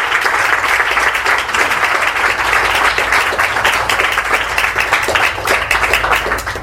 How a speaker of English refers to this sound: Let's give them a round of applause for their time and support.